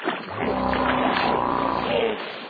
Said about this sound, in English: The thing about this sound effect is it's like something is splashing in the water